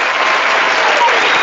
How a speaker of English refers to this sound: I love applause. It's my favorite part of the show.